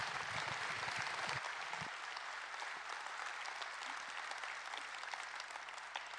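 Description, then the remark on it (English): A crowd applauds steadily, a dense wash of many hands clapping at an even loudness for several seconds, with a few low thumps early on and no voices over it. “Give them a round of applause, will you?”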